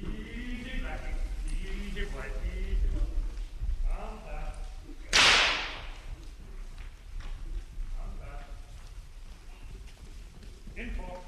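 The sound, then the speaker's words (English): Performing horses' hooves clip-clop at a steady pace over a busy background, with voice-like murmuring throughout and one sharp, loud burst of noise around the middle. “With performing horses, usually originally they're broken into a routine, and this doesn't vary very much.”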